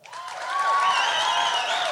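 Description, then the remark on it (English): A live audience bursts into applause mixed with high-pitched whoops and woos from many women, swelling quickly and holding steady as a dense, lively wave of clapping and cheering. “I heard a lot of ladies applaud for the second one.”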